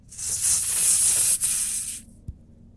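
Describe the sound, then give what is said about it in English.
A loud, steady hiss, meant as a giant snake hidden in a bush near a tree in a tabletop role-playing game scene, sprays for about two seconds with a brief catch in the middle, then cuts off, followed by a single soft low thump. “The hissing coming louder and louder.”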